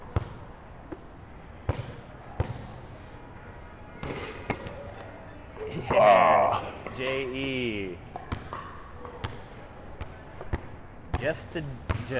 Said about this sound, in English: Yeah, then I'm going to throw it off the backboard. I'm going to jump in the air, and while I'm in the air, I'm going to put it back in. Yes! Ooh. Twice in a row.